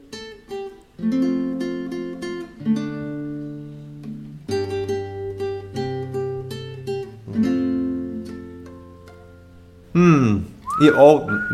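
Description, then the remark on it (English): Strummed guitar chords play a slow tune, with a brief high whistled note near the end as voices briefly break in. “Alright, take your guitar and play the song, and I'll guess. I'll whistle also.”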